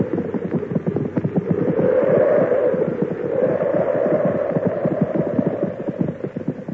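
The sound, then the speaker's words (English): Horses' hooves clip-clop in a dense, overlapping patter as several horses are brought into a shelter during a snowstorm, over a steady low rumble, the busy rhythm continuing throughout. “Oh, bring the horses in too.”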